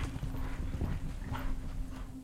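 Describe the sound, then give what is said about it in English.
A horse spurred by its rider pounds along at a gallop, a steady stream of thudding beats over a low rumble, moderately loud, with no voices. “He panicked and spurred his horse forward into a gallop, fleeing to the safety of the village's walls.”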